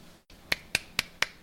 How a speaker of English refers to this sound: That's me clapping